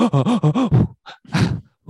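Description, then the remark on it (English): A voice attempts beatboxing: five quick, rhythmic voiced grunts followed by a few ragged, breathy huffs and gasps with short pauses between them, sounding more winded than percussive. “Can we hear just 10 seconds more of you beatboxing?”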